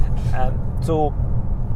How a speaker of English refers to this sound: Ed's overtaking a learner here, by the way.